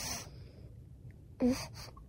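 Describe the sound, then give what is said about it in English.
A baby suckling while breastfeeding: a few soft, breathy snuffling pulls, spaced out with short quiet pauses in between, no talking. “Tell me there's not a breast in her mouth, dude. Yes.”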